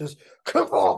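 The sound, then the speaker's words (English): A man says a word, then forcefully shouts a second word that imitates a loud, blustery old man's sneeze, a single close, explosive burst lasting about half a second. “I just realized, too, just Kefauver, like, just sounds like an old man sneeze. Like, one of those just, like, real loud ones that you get.”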